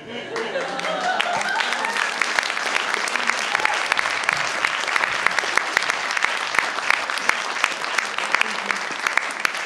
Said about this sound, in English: Round of applause